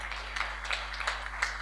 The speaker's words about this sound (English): You can clap. You're free.